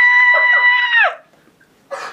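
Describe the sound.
A voice lets out a loud, sustained high-pitched screech imitating a bat, held for about a second before sliding down and cutting off, followed by a brief pause and another short vocal burst.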